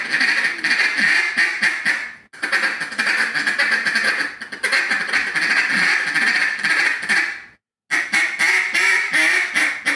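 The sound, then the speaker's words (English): Rapid, continuous duck call feed chatter in a double-cut style, loud, a dense rolling stream of short raspy notes broken by two brief pauses, with no talking. “Lazy. Feed chatter. Double cut feed chatter.”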